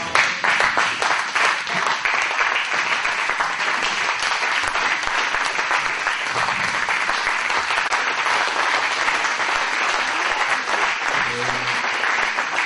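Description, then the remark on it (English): An audience stands and claps steadily for over twelve seconds as a clap offering to the Lord, a dense, even wash of many hands at a loud, constant level, with a few voices calling out faintly beneath it. “Stand to your feet and give the Lord a clap offering.”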